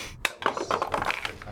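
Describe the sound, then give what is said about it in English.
A die thrown for a death saving throw clatters into a dice tray with a sharp first knock, then a quick run of small rattling taps as it tumbles and settles, landing cocked, moderately loud. “I didn't mean to throw it into the dice tray. It got stuck in there, but it's cocked.”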